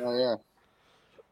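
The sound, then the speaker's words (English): A single short, loud burp with a buzzy, voiced tone lasting about a third of a second, followed by faint background noise. “So, anyway, I burped.”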